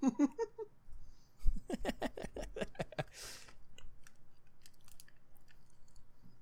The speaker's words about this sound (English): All right, well, while you're chewing, how about I can't believe you ate that whole fucking bag.